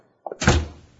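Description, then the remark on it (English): A door swings shut with a couple of light clicks from the latch and handle, then a solid thunk as it closes, followed by a short fading rumble. “Close the door, Jingles.”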